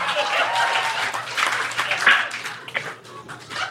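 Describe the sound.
An audience bursts into sustained applause as an applause break for a line about uncles, a dense wash of clapping that holds steady for several seconds before thinning slightly, with a few cheers and voices mixed in.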